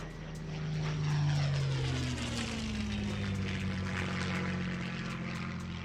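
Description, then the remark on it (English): Japanese propeller spy planes drone loudly in the air around the island of Nauru in December 1941, a steady rumbling roar whose engine pitch slides downward as they pass, with no voices present. “at Pearl Harbor in Hawaii, Nauru residents spot Japanese spy planes in the air around their island.”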